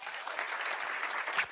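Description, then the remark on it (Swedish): Audience applause for the evening's producer fills the scene, a steady wash of many hands clapping, dense and even throughout with a slightly louder burst near the end. “Jag skulle vilja att ni ger en applåd för kvällens producent.”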